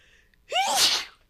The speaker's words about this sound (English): And I'm going to sneeze.